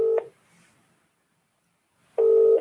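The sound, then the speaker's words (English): A telephone ringback tone heard down the line: the tail end of one ring, about two seconds of silence, then the next double ring starting. Steady, clear, and no voices. “I still love that double ring.”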